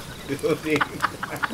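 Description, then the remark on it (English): An owl hooting: a couple of low, wavering hoots followed by a quick string of shorter, sharper calls, moderately loud against a noisy background, with no talking. “It's just an owl. That hooting sounds like Satan and his regiment of imps.”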